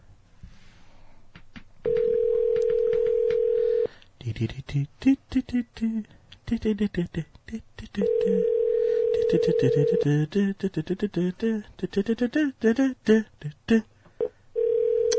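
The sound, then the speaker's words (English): An outgoing phone call from a Chicago number to a man rings twice on the line, each steady ringback tone lasting about two seconds and going unanswered, while people talk between and after the rings. “Whatever happened to this answering the fucking phone and seeing who it was?”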